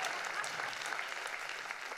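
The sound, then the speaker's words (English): A crowd at a sermon claps steadily, a dense wash of many overlapping hand claps with no break, bright and moderately loud throughout, with no clear voices over it. “We ought to clap our hands.”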